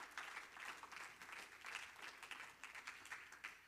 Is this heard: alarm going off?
no